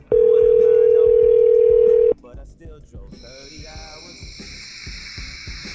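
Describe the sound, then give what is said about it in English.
A loud, steady telephone dial tone hums on a single pitch for about two seconds, then cuts off abruptly, leaving muffled voices and a thin high-pitched whine. “Listen, I think the phone got disconnected just then.”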